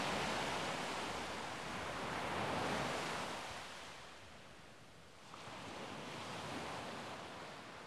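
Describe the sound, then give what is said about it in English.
Ocean waves crash and wash around rocks in a steady roar of surf, swelling to a loud surge, easing off briefly, then building again. No voices, just continuous rushing water. “The waves crash around it, and the infiltrator slips down below the water.”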